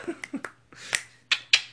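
Several crisp finger snaps crack out at uneven intervals, the last few sharper and louder, with some soft murmured vocal sounds mixed in near the start over a low steady hum.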